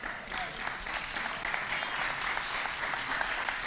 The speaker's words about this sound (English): And for the record, this is where you should all applaud.